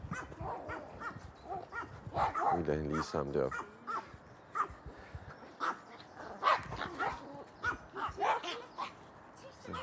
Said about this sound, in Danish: De er altid meget i gang med at gø.